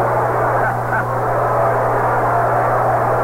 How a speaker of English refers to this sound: Here it is, a curve a little bit high. You heard the crowd bubbling. They thought the curve was in there. Listen to them.